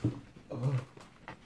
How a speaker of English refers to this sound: Oh, there's a dog in between my legs.